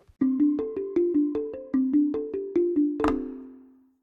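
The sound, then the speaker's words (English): A cell phone ringtone plays a quick, bright melody of about a dozen evenly spaced tones, ending on a louder final note that rings out and fades. No one speaks. “Cell phone etiquette. Have you been in a meeting and all of a sudden a loud buzzing goes off?”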